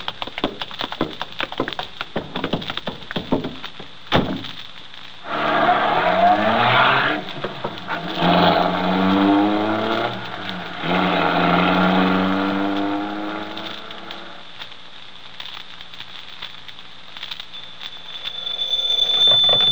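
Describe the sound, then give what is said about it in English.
A few clicks and thumps, then a Ford sedan's engine roars to life, revs up loudly and holds a steady growl as bandits drive off after robbing a jewelry store, gradually fading away. “Come on, pal, into the car.”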